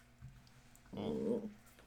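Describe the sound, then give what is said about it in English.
A dog gives a short, low growl lasting about half a second, heard alone against a faint hum. “Oh, my dog is growing. I don't know if that's coming on the mic.”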